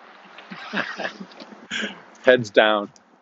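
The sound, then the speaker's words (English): A dog whimpers in two short, high, whining bursts near the end, fairly loud, after a stretch of indistinct talking and murmuring. “And now they're looking at some old guy with a dog talking about them.”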